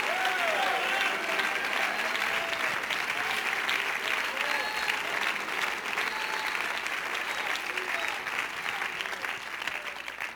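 audience clapping hands

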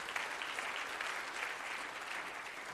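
audience clapping in praise

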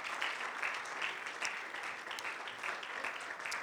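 audience clapping hands

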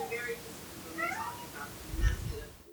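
cat meowing

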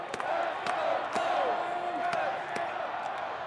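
baseball stadium crowd cheering

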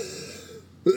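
throat clearing and coughing

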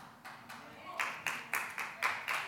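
audience clapping

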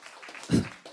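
audience applause

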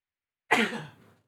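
sneeze

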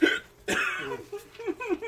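hiccup

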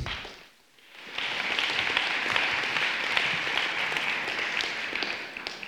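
audience applause

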